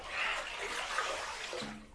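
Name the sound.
water sloshing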